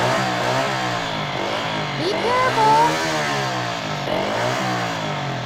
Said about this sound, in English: Giving me a ride to Mr. Invento's house on your motorcycle